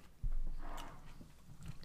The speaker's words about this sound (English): Well, why don't you take a quick bite of that? Okay.